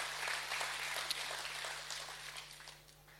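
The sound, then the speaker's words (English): An audience claps together in a dense, steady burst of applause that holds strong for a few seconds, then gradually thins and fades, with a low electrical hum running underneath. “Come on, somebody ought to clap like God wants to use your life.”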